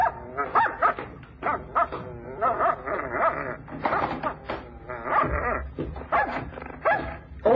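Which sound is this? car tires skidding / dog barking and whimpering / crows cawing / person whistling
dog barking and whimpering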